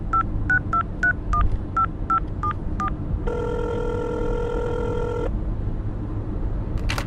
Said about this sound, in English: And then she'll dial the right number this time.